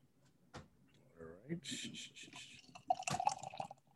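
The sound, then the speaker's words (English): A heavily fruited mango beer of about 5% is poured into a glass, not pouring thick, a couple of seconds of splashing, fizzing liquid, with a clink near the end and muffled voices in the background. “It's definitely not pouring thick, but man, you smell the fruit immediately when you pour it.”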